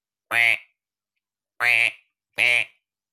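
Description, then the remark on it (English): A person mimics a duck with three nasal, buzzy quacks, each about a third of a second: one, a pause, then two closer together. Loud, with nothing else in the background. “That's quacking. That sounds, I'm going to assume that's quacking.”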